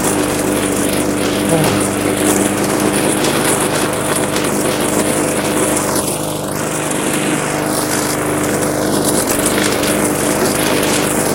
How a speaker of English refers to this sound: Mowing away with a full tank of gas, everybody up across the hut.